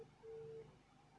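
A single steady phone ringing tone, a smooth low electronic burst lasting under half a second, as a call is placed to a father, clear against a faint, quiet background with no one talking.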